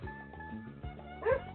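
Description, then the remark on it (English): A female dog gives a few short barks over a low, continuous growl, with the loudest yelp near the end. The sound is muffled and fairly quiet. “That's the most I've ever heard her bark like that. And it sounds like a regular dog barking.”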